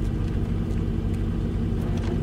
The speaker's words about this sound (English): It's okay out there. They're just moving the truck.